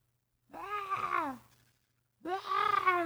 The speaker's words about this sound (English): Not just that, but you hear and random screams coming from below.